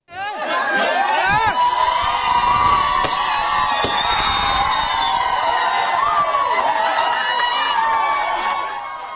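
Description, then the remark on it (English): A large crowd in India screams and cheers with joy as homosexuality is decriminalized after the Supreme Court ruling on Section 377, a sustained, loud wall of overlapping shrill voices and excited shouting that holds steady for several seconds before easing slightly at the end. “Screams of joy there ringing out across the world as India finally decriminalizes homosexuality.”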